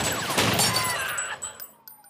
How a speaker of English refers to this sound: Mine is a little different, but I chose 2008's Hancock. Suspects on northbound 110. Heavy gunfire exchanged. We need backup.